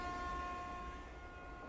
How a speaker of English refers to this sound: Puzzled, we felt the train slowing down. It blew its whistle.